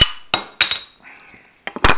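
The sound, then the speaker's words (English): A few sharp metallic clicks and clinks, then a short hiss, followed by two more quick metal knocks, as the cap of a bottle of stout beer is levered off with a bottle opener from the Netherlands. “is a bottle opener from the Netherlands for my bottles.”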